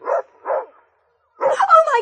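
A huge mastiff, let loose and not fed for two days, barks twice in quick, deep bursts, pauses, then lets out a longer, rougher bark that trails into a growling whine, loud with no one talking.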